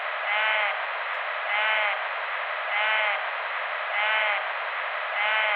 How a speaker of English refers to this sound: I played what is probably a bleat of a bighorn sheep. And I talked to several experts on both dalls and bighorn sheep who claimed that they'd never heard the animals call at all. Here's that sound again, but repeat it a few times.